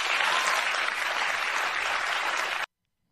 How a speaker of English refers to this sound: And everyone claps for that. They clap for them circumventing the Constitution that says if it's not in the federal government's purview, it goes to the states.